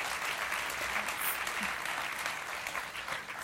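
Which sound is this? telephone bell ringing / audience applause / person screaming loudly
audience applause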